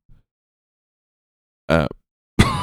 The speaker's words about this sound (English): But been coughing mad stuff up. And I'm a spitter, you know?